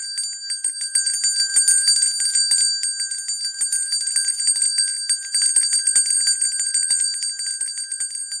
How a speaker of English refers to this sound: It swung so softly in the outset that it scarcely made a sound, but soon it rang out loudly. And so did every bell in the house.